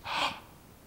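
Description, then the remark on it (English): A single sharp, breathy gasp, fairly loud, from a woman stepping forward on a theater stage as the lights fade at the end of a musical, rushing in quickly and trailing off into a soft hiss of air; no talking. “And as all the lights fade in the theater, except for one small halo of light focused on her face, she steps forward, perhaps looking out to the audience, and gasps.”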